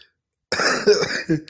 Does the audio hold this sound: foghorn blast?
no